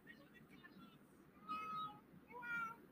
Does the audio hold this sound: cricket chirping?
no